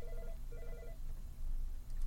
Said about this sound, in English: We have a caller. All right, you want to pick up the phone?